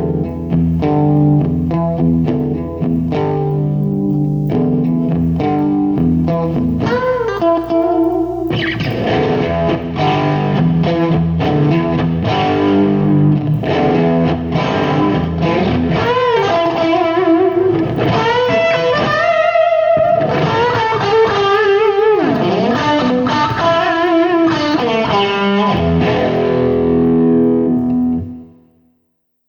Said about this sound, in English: This first one is the ST2 Power Stack. First is with the pedal off, then I'll click the pedal on with the sound knob turned to the crunch setting.